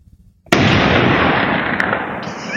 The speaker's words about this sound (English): Just one small man shooting one big gun.